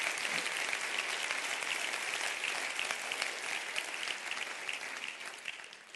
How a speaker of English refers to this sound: Amen. Clap your hands all over the house.